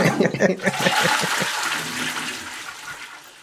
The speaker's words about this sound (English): And we can you can put like a sound effect in there or something. Oh, I will. Don't just worry like, about that. Like the sound of like water dropping, like pee.